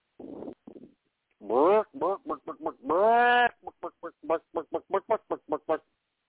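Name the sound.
voice imitating chicken clucking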